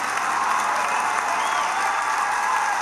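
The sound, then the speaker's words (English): Steady applause from an audience, a dense wash of many hands clapping at an even, sustained level for a few seconds with no voices standing out. “Men, you can clap too.”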